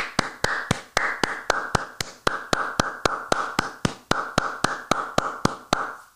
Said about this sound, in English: Let's give a round of applause to an awful women's division.